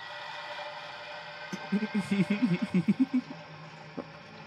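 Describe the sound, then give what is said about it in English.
A train or trolley rolls across a bridge: a steady low hum with a quick run of about ten rhythmic, low clunks that swell and fade, then one sharp knock. “It's just bridge sounds. What? Those are bridge sounds? Yeah. Like a train, maybe? Like a trolley over a bridge?”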